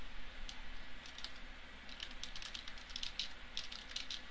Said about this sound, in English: I'm sorry, I'm still typing.